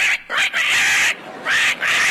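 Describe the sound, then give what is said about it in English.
A sulphur-crested cockatoo screeches loudly, a series of harsh, raspy squawks in quick succession, one long drawn-out cry in the middle, with no talking. “They are very noisy birds, though. And a soft crested cockatoo.”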